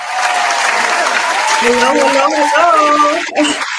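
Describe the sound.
A recorded digital round of applause for a political candidate in a district of Clarksville: dense, steady clapping and crowd noise holds at an even level for nearly four seconds, with a voice talking or calling out over the second half.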